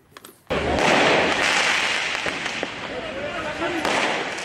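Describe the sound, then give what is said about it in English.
A sharp burst of firecracker-like bangs from fireworks shot at police by angry demonstrators during violent nationwide street protests in France erupts after a brief quiet moment, followed by a loud, continuous crowd roar and shouting with scattered pops and thuds throughout. “We're watching video of angry demonstrators shooting off fireworks at police and lighting fires to schools, town halls, and police stations.”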